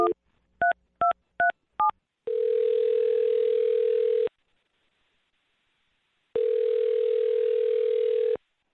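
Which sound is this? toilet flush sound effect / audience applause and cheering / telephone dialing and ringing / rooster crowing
telephone dialing and ringing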